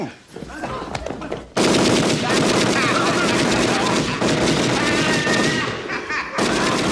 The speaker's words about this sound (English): Them diving into the hallway as the gun starts going. How can TV volume be so loud?